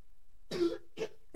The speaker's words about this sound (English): He's doing that on purpose, bro. I can see he's forcing it out now. Like, he's trying to cough.